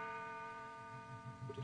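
A clock strikes seven o'clock, its sustained bell-like ringing tones hanging steadily while soft, regular low pulses begin to beat beneath them. Quiet overall, with no voices.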